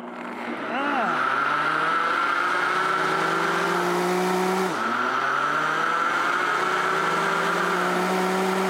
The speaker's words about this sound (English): And we're just going to carefully put this all in the blender, guys. Like, you know, so it's not messy. So we'll take this beautiful blender, and I'm just going to turn it on, and then we're going to liquefy it.